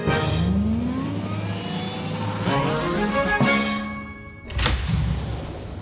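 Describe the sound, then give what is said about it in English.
A pretend time machine sound effect for time travelling: layered whirring tones climb and sweep upward like a revving engine, punctuated by bright whooshing bursts, a short dip, then a final loud whoosh. No talking. “Okay, let's jump in our pretend time machine and start time traveling.”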